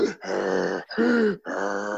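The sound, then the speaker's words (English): A voice imitates the heavy, strained grunting breaths of a big man in a steam room, three long throaty exhalations in a row with brief gaps between them, fairly loud. “Unless you sit next to one of those big guys that are like doing one of those breathing.”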